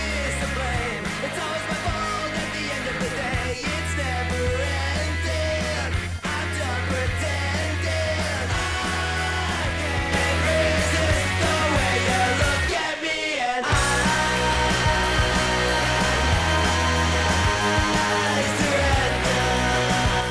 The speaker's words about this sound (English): It sounds lo-fi. Pretty good. I could listen to this all day. Just wait for the hook. When he screams and the music stops, I loved it.